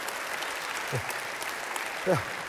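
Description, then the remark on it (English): An audience claps steadily in response to a speaker mentioning 53 years of marriage, a dense, even patter of many hands throughout, with a couple of brief voice fragments rising above the applause. “So few make it that they always applaud when you say that, you know.”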